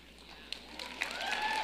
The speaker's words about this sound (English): And I appreciate you for clapping first, sir, with the glasses. I saw you.